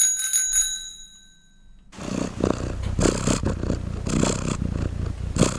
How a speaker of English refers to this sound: It's another animal. It's a very distinctive sound. Any guesses on that one? It's a cat purring. A purring cat.